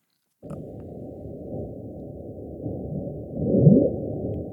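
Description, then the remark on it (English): A deep, muffled underwater rumble from icebergs cracking as they move and hit the seafloor drones steadily, then swells louder near the end with a brief rising groan before easing off. No voices. “So, that's what they believe they are now, is that they're detected icebergs moving and hitting the seafloor.”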